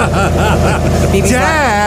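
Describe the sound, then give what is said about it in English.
A voice imitates a remote-start car's engine cranking and starting, a steady low rumble that rises into a revving, wavering drone, fairly loud with some background chatter. “We're walking out to get in the car, and he's still doing something in the house, but he cranks that sucker.”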